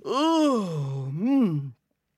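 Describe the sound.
A storyteller voicing Simba the lion waking up and stretching makes a big, drawn-out vocal yawn. It rises and slides down in pitch with a second smaller swell at the end, fairly loud, then silence.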